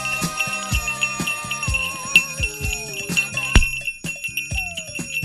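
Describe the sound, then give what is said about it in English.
A bell rings bright and steady, its high metallic tones sustained over a busy rhythmic backdrop of thumps and shifting musical notes, with no talking. “Did someone say ring the bell?”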